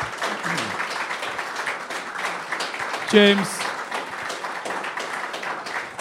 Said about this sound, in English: if you guys want to start clapping now, that'd be good.